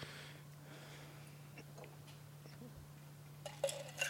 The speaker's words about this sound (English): Yeah. But when you take it and you pour it into the shaker and then add some ice.